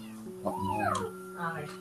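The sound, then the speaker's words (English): A single drawn-out meow that rises and then falls in pitch, made by a man imitating a cat. It is moderately loud over a steady low hum, followed by a brief murmur. “Oh, I was about to say, because it sounded like the cat meowed right after he said...”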